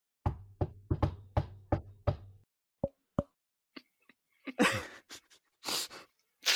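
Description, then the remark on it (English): A rapid run of about seven hollow knocks, fairly loud, imitating a knock on a door, followed by a couple of isolated taps and some breathy, rustling noises. “Chatwin, you knock on the door.”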